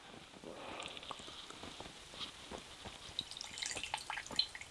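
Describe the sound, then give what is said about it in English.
The last of the liquid is poured into a cup, trickling and splashing in a quick, uneven run of small drips and spatters, fairly quiet, with no voices. “That's the splash.”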